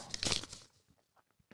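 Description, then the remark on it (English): Paper being unwrapped: a brief burst of crisp, crinkling rustle that quickly fades into a few soft, scattered crackles and ticks. “Okay, unwrapping this piece of paper.”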